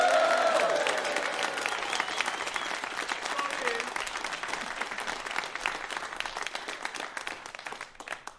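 An audience applauds and cheers loudly as a performer is introduced, a dense rush of clapping with a few whoops at the start, gradually tapering off over about eight seconds.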